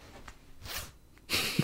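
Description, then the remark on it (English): A trouser fly zipper on a man's suit is unzipped as he goes to relieve himself, a couple of short ripping strokes followed by a longer, louder zip at the end, with no talking. “Does he take his fly down and take a piss or something?”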